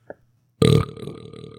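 A loud, drawn-out belch erupts suddenly after a brief faint sound, rumbling strong for about a second before trailing off.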